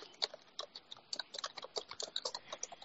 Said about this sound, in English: it's typing away. Typing away, bro.